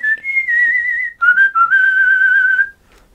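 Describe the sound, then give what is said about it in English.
A person whistles a short melody, the clear sustained tones wavering with a gentle vibrato and stepping between a few pitches before trailing off. “How do you vibrato your whistle?”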